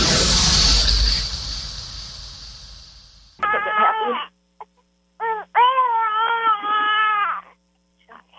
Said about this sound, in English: That's not you crying. That's actually your baby.